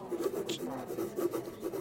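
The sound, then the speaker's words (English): A pen or pencil scratches rapidly across paper in short, irregular strokes as a drawing is scribbled, a steady rasping scribble with no voices. “Give me that piece of paper and”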